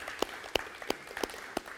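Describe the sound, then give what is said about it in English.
Applause from an audience at Journey Bible Church's West Campus, clapping for the tech crew, with a handful of sharp claps landing in a steady, even rhythm over a soft wash of room noise. Nobody speaks. “So let's give an applause just for our tech guys for just, you know, sticking it out.”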